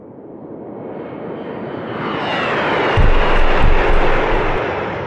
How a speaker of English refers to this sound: This Russian jet almost crashing into this, matter of fact, crashing it and destroying this drone as it tries to dump fuel all over it.